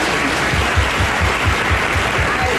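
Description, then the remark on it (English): A crowd applauds loudly and steadily throughout, a dense wash of many hands clapping with no break and no voices standing out. “And they all applaud, and there's this hysteria about assault weapons.”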